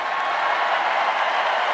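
A large convention crowd, the Trump family among them, applauds and cheers in a steady, dense roar that holds at full strength for the whole couple of seconds, with no individual voices standing out.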